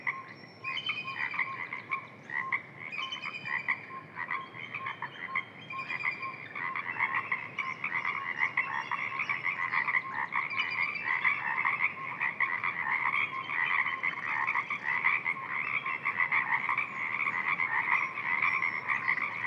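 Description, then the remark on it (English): A dense chorus of many Pacific tree frogs calling continuously from a marsh, overlapping croaking voices forming a steady, pulsing wall of sound, with no talking. “Listen to the Pacific tree frogs, so many calling from the marsh.”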